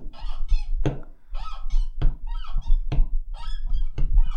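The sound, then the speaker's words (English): A squeaky door hinge that needs oil creaks repeatedly in a rhythmic, looping pattern, its high whining squeals punctuated by regular sharp thumps, loud with no talking. “Sounds like a door, isn't it?”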